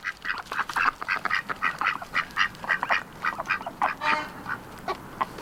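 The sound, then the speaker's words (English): A flock of ducks quacks in a rapid, overlapping chorus, dozens of nasal calls tumbling over one another without pause, over a faint background hiss. “That was ducks. Ducks. Quack, quack.”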